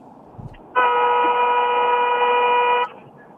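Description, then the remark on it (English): A single sustained car horn blast lasting about two seconds, loud and steady with a bright, buzzy harmonic tone, over faint background noise, honked on a count of three in support of healthcare workers. “On the count of three, honk for healthcare.”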